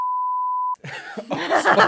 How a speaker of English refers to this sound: Spoilers. We might beep that out. Yeah, but, we'll beep that bit out.